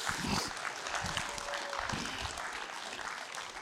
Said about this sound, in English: Give that one a round of applause.